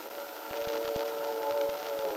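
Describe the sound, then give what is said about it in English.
A train rolls past at steady volume, its wheels clacking in an uneven rhythm beneath a sustained, whistle-like tone. No one speaks. “You know, I'm never sure whether you're checking the train or your watch.”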